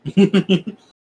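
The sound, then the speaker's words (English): A person growls in imitation of a small fire-breathing creature, a short burst of four or five rough, voiced pulses that trail off in under a second. “It just looks at you with its round eyes, spits out a little bit of fire as it opens its mouth, just growl it.”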